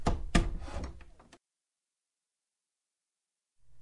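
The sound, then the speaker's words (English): A door into the Prime Minister's study is pushed open after being unlocked: a sharp latch clunk followed by a second of rattling, scraping movement, then silence before a low hum creeps in. “I'll do this the old-fashioned way. Okay, we're in.”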